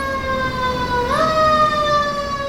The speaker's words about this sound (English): No, there is another fire truck coming by. Sorry, one second. I live on a super loud, busy corner in San Francisco.